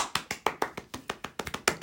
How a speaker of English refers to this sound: Okay, there's like two people clapping. That was awfully reluctant, though.